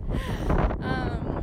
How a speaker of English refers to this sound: Oh, so I'm just walking through some volcanoes that are dormant on land that has traditionally been stewarded by the Tiwa people, otherwise known as Albuquerque, New Mexico. It's very windy today.